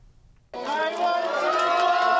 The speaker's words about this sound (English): As the athletes step off the plane, they're surrounded by a lively crowd and cheering that's seemingly endless. The crowd goes wild at the sight of Guo, known as the goddess of weightlifting.